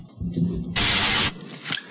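A harsh burst of scratchy rubbing lasts about half a second, broad and hissy, like fingers scratching at an ear, with softer rustling before and after.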